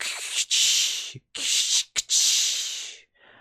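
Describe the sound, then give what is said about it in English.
A voice imitates a steam-powered mech moving, its steam tank on its back going into overdrive, making four loud, breathy hissing bursts separated by short gaps, the last long hiss trailing off into a faint, softer puff. “you start hearing these the steam tank on his back. You start hearing it go into overdrive.”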